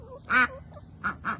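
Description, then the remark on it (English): A single female khaki duck, left behind alone by the other ducks, calls out loudly: one drawn-out, nasal quack followed by two shorter quacks in quick succession, with no one talking. “The other ducks leave her all the time.”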